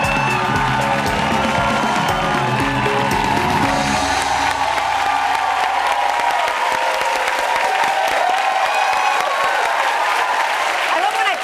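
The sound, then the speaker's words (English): The Daily Show audience claps loudly and steadily with cheers and whoops mixed in as guest Eva Longoria is welcomed, a dense wash of applause that holds its level for the whole stretch. “If I were you, I would clap for myself every time I enter the room.”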